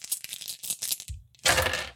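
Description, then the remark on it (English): Dice rolled for a technology roll in a game: a quick scatter of clattering hard little objects tumbling across a surface, a series of sharp clicks, then a brief pause before a louder burst of rattling. “I'll need a technology roll for that.”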